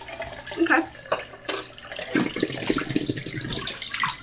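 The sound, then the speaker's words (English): Tap water runs steadily, a continuous hissing splash that shifts in tone as the stream hits something, with a few brief knocks and clatters near the start, while photographic film is being washed. “I just finished washing. I washed like 3 or 4 times for you to catch up.”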